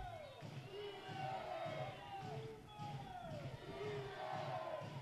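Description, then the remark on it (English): A large stadium crowd at a baseball game chants the Boomer and Sooner chants in a steady, repeating rhythm, a loud two-part call rising and falling about once a second over a constant roar of many voices. “Yeah, they're trying to get this crowd going, get the Boomer and Sooner chants going.”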